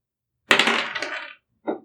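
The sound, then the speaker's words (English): Dice clatter and rattle across a hard table for about a second, followed by a brief second clack as one settles, crisp with no voices; one of the dice is being rerolled after a roll of 6. “So I can reroll one of these dice.”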